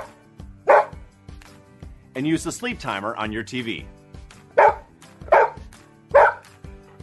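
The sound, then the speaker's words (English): A dog barks in four sharp bursts: one early, then three evenly spaced near the end, with a person speaking in between and faint background music underneath. “Instead, try playing a battery-powered radio for your dog when you go to work.”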